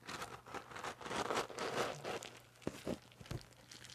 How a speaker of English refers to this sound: You're going to hear ASMR cat noises. Oh, here we go. Hold on. Before you continue. ASMR cat food scooping.